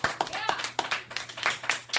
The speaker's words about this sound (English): Yeah. So much clapping.